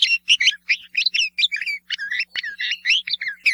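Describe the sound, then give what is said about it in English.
A red-vented bulbul gives a rapid series of scratchy, throaty chirps, fairly loud, in quick uneven bursts with no talking. “But the scratchy and throaty calls of the bulbul are not considered by many to be as melodious as those of that well-known bird.”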